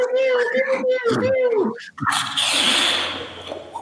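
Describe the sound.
Several voices imitate Star Wars battle sounds at once: wavering, siren-like wails of a hangar warning alarm during an attack and pew-pew Death Star laser squeals, then a loud, hissing burst of mouth-made explosion noise from the lasers that fades out over the last second.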